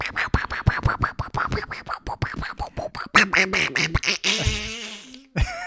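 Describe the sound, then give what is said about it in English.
A rapid string of nasal, buzzy Donald Duck quacks chatters in quick rhythmic bursts, then shifts into longer garbled squawking phrases, loud, like an exaggerated duck voice babbling. “And Donald Duck just made an appearance.”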